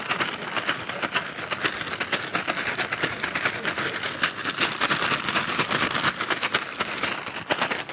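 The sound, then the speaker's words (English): Pieces of a broken watch rattle and clatter inside a crinkling brown paper bag, shaken hard and steadily for several seconds with dense, rapid clicks and a constant rustle, no pauses and no talking. “And so I broke it a little bit more, and I took the pieces of that watch, and I put them in this brown paper bag.”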